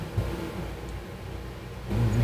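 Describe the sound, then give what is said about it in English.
A car engine rumbles steadily, then revs up louder near the end with a rising, throaty growl. No one speaks. “Who car is that?”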